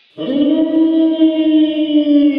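A single long, loud howl from a summoned hellhound, a demonic dog, rises in abruptly and holds a steady, rich low pitch for over two seconds, sagging slightly downward, with no other sounds.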